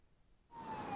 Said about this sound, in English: A siren wailed and passed the shack, deafening at first, then gradually fading.